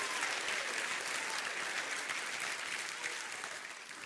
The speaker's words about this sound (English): Come on, let's clap for him right now. Let's just go ahead and clap for him right now. Woo!